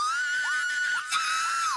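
An alarm sound effect cut in for a surprise moment: a loud, steady electronic tone with a bright, buzzy edge holds one high pitch, breaking briefly twice with short downward dips before resuming. No voices.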